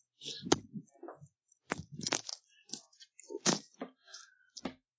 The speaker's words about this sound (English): Sorry, I just knocked my headphone out.